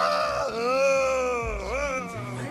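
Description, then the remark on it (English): A voice imitates awkward, exaggerated sex moaning: one long, loud drawn-out wail that wavers and dips in pitch midway, strained and almost bird-like, with no other sounds around it. “Like, you gotta moan, and the moaning is not well done.”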